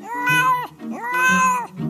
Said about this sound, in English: So they get a pet psychologist in. Ask the kitty how he activated the floor. Meow, meow, meow.